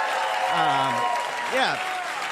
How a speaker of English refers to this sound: I don't know what the fuck you're applauding for. Don't do it.